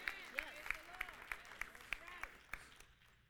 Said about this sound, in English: It's almost as if I got more claps that time because you're starting to realize I'm not after all your money.